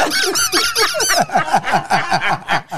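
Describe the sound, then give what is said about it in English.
A rubber duck squeaks about a dozen times in quick, rhythmic succession, each squeak a shrill, wheezy honk that drops slightly in pitch, with no talking over it. “I knew with the rubber duck.”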